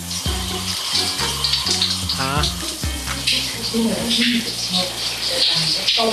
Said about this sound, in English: They're in the shower and she's washing her daughter's back.